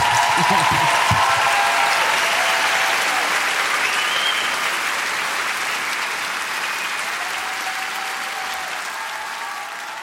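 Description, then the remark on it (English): Steady, dense applause from a large audience thanking Alison Roman at the end of a talk, loud and sustained throughout, gradually easing off slightly toward the end, with faint voices mixed in near the start. “I realized that the timer that I thought was counting down is now actually gone to counting up, so we are over time now, but can we please have a huge thank you for Alison Roman?”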